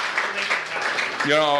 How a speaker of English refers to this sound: I don't know, folks should really give a round of applause.